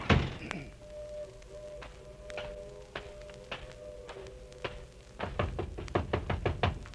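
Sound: knocking on a door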